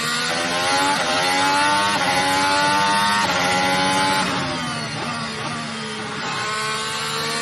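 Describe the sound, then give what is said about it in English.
A racing car engine hums loudly at steady, moderate revs while running behind the safety car for a couple of laps, its pitch gently rising and dipping as it cruises along, with no voices over it. “Yeah, so that was just a couple of laps there behind the safety car.”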